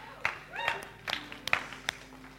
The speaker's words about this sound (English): I'm clapping myself. I'm clapping you guys because I'm really impressed by those last 5 minutes.